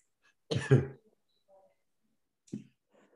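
A harsh, close-up cough bursts out, followed a couple of seconds later by a shorter second cough, with near silence in between.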